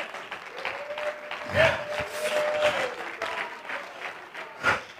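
A church audience applauds steadily for several seconds during a sermon, a dense wash of many hands clapping with a few louder bursts, while an organ-like tone and faint voices sound beneath it.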